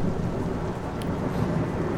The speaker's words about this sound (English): Well, you know, you've never listened to a rainstorm backwards. Let's try it, shall we?